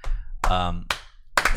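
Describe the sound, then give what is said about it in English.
A slow clap from three people: about four sharp, evenly spaced claps, roughly half a second apart, with a brief voiced sound between them. “The slow clap. But where does it go from there? There's only three people.”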